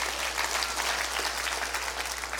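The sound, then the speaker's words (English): Many people clapping their hands together in praise of God, a sustained burst of applause, dense and steady for a couple of seconds with no voices standing out. “You want to clap your hands and rejoice because of His goodness?”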